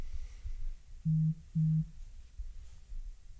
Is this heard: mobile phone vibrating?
yes